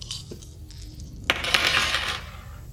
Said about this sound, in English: Okay. Roll the dice.